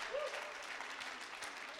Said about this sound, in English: Dale un aplauso fuerte a Cristo